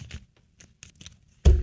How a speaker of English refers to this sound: Okay. So I'm shuffling and I'm about to draw a card for us. Here we go.